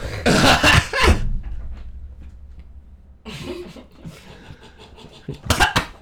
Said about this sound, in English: Smite me. Oh, I just choked on my drink. Fucking smite me. Sorry, cough button.